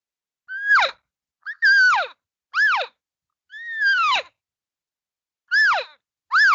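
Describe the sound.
A voice imitates a cow's gentle call, the call a cow uses to tell others to come over this way: six short, tuneful calls, each swooping up and then dropping in pitch, separated by brief pauses, with no other talking.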